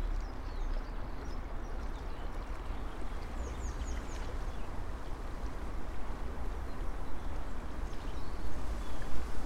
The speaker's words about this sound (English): The tide's going out, and obviously as the tide goes out, the water level is going to be dropping. We're looking at bits of rocks that are kind of forming sounds as the water flows around it.